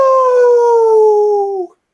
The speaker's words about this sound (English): Well, speaking of the old time, I hear that the moon is out and there's some werewolves howling. Ow!